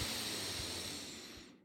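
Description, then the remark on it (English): A long, steady breath drawn in through the nose, an airy hiss lasting under two seconds and tapering off at the end, with no talking. “Inhale. Exhale. Inhale deeply.”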